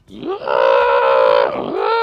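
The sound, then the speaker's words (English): A Vrock lets out a shrill, harmonic monster screech that rises sharply, holds loud and steady for over a second, dips briefly, then swells into a second drawn-out cry. No one speaks over it. “It lets out a shill screech.”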